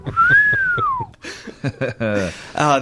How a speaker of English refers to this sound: People don't whistle it. Stuff. I am whistling at everything.